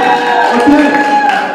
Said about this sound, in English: Just raise your hand and cheer for a second. Yeah, right?